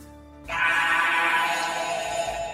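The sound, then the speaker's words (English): After a moment of quiet, a voice bursts into a loud, harsh, rasping roar imitating a metallic, fiery monster crying out as lightning jolts it, held for about two seconds before easing off slightly. “Lightning licks up and down, and it seems to jolt and cries out in a metallic, fiery roar. Can I hear what that roar sounds like”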